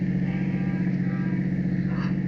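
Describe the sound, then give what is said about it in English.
A steady, low engine drone from a car on the move, a continuous rumble with an even hum and faint road noise, no clear speech over it. “Stop the car.”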